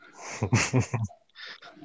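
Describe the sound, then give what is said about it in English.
A dog snorts and sniffs: four quick, rough bursts in a row, a brief pause, then a softer stretch of snuffly breathing. “Yo, what's this dog's name?”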